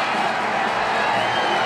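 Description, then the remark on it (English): A large boxing arena crowd in a Rocky film cheers for Rocky Balboa, the Iron Man from Philadelphia. The steady, dense roar fills the space loudly and evenly throughout, with no single voice standing out from the mass of noise. “Balboa, the Iron Man from Philadelphia, and this crowd is certainly with him tonight.”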